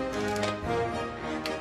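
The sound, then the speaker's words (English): Rubber balloons squeak and whine as they are twisted, a steady run of shrill, strained tones that bend in pitch, broken by a few brief creaks. No one speaks. “This is the most annoying sound I've ever heard in my life.”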